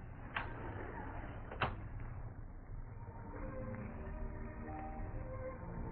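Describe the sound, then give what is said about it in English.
A door eases shut with two soft clicks of the latch about a second apart, followed by a low steady hum and no voices. “On my way out, I'll close it easy.”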